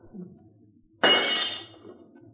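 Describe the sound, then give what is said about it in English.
A sudden loud crash of window glass being broken to get into a room, a sharp burst of shattering that rings for about half a second before fading into quiet. “I'm going to have to break this, ma'am.”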